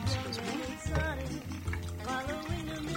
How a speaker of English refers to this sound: So once your shaker is all nice and frozen, okay, you pour it over some ice.